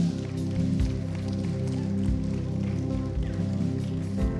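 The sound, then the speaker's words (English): An audience claps and cheers steadily for several seconds for people who have chosen to follow Jesus, over a sustained, low, tonal background, with scattered sharper hand claps breaking through the dense wash of applause. “That's what that clap and cheering was.”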